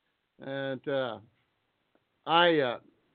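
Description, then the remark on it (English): A voice imitates the chicken-like iPhone notification of an instant message group chat: two quick clucking bursts, a pause, then a longer rising squawk, all fairly loud with no other sounds around them. “If it's the Sackheads chat thing we got going on instant message, it usually sounds like a little chicken.”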